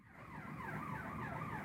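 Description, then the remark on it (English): An emergency vehicle siren wails outside, its pitch rising and falling in quick repeated sweeps, holding steady and fairly loud over a low rumble of traffic, with no one speaking. “Where are the sirens when we need them?”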